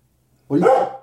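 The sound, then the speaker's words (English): A single loud dog bark bursts out after a moment of near silence, full and throaty, trailing off over about half a second. “What are you barking at?”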